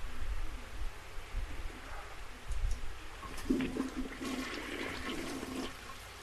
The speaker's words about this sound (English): Don't flush the toilet! Hello? Don't flush the toilet. Did you just not hear me say don't flush the toilet?